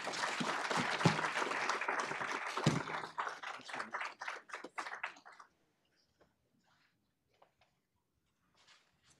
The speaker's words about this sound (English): Well, that was terrific. I think that deserves another round of applause. Thank you again, Congressman Hall.